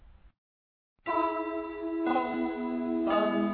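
After a brief silence, bells ring out in three loud, evenly spaced strikes about a second apart, each tone sustaining and overlapping the next; it is the opening of a Christmas song played on a Christmas show.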